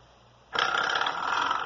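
After a quiet moment, a spring doorstop is struck as a musical instrument and gives a sudden, loud buzzy twang that wobbles and rings on steadily without fading, like a warbling, vibrating drone.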